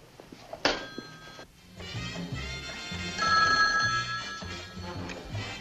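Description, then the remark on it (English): A telephone bell rings on and off in steady bursts, a bright metallic trill repeating with no one picking up, preceded by a short thunk, as an operator places a call from Phoenix, Arizona, to Mr. Ocean. “Mr. Ocean doesn't answer. Still doesn't answer. And Mr. Foster? Well, of course, keep calling.”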